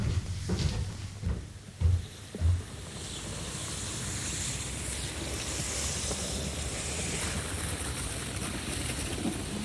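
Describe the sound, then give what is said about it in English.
A few knocks and rustles of a camera being unpacked in a cabin in the first seconds, then a steady rushing wind- or water-like wash fills the rest, with no talking. “Getting out of bed, I move across the cabin and unpack my camera.”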